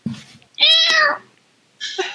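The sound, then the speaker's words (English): A person imitates a cat meowing: a long, drawn-out, fairly loud meow, then a shorter second mew after a brief pause, with a faint low murmur at the very start. “He does not make a cat noise, thank you.”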